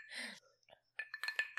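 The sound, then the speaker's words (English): Glasses clink together in a toast, several quick taps in a row with a bright ringing tone, after a brief soft breathy whisper at the start. “Okay, ready? Yeah. Cheers.”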